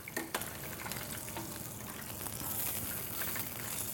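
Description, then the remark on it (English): Golden chicken wings sizzle steadily as they are rolled in a hot sweet chili and sriracha sauce, a dense bubbling crackle with a few sharp pops early on, growing slightly louder toward the end. No one speaks. “So I'm going to grab these out of there and roll them right into the sauce. That looks amazing. That's super golden. And you can hear them.”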